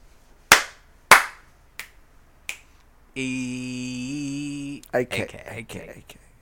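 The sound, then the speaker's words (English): Four sharp percussive hits, two louder, fuller hand slaps then two lighter, crisper finger snaps, spaced evenly apart. A sustained sung note and brief talking follow. “We got 2-2, some slaps and some snaps, and yeah, I'm gonna give it 2.”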